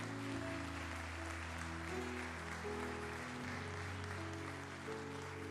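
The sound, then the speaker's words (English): A crowd claps steadily together for several seconds in a hand clap of praise to Jesus, a dense and sustained wash of applause, while low organ or keyboard chords hold underneath. “Come on, give Jesus a hand clap of praise.”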